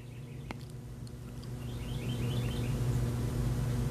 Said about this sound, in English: The birds sound lovely. I have my door open, so whatever is outside, you can hear. Can you hear the wind blowing, the cars driving by?